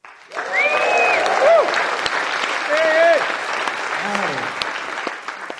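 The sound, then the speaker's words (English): A live studio crowd on The Reading Room on Siren FM applauds loudly and steadily for several seconds, with scattered voices whooping and cheering above the dense clapping before it begins to thin out. “Let's give it a cheek cheer.”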